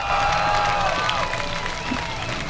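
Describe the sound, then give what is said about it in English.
A crowd cheers and roars steadily at Jennerstown Speedway's victory lane as race driver Dale Kimberly climbs out of his race car, a loud, dense wash of voices and clapping with a few higher whistles and shouts cutting through. “He can hear you. Make some noise.”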